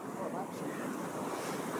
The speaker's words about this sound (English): why don't we go a little bit away from the waves, because I think it might also be too much of background noise.